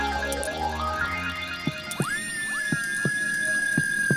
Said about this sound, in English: Is that your heart beating? Did you put the microphone up to your chest? I did. And record your own heart beating?